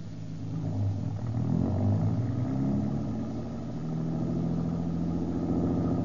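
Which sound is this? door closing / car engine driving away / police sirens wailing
car engine driving away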